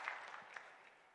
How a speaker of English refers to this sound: I hear some clapping out there. That's all right. We can clap. We can clap.